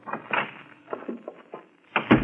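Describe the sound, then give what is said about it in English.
An office door is opened, with a few clicks and rattles of the handle and latch, then a heavier, louder clunk and thud at the end. “How do you lock this door?”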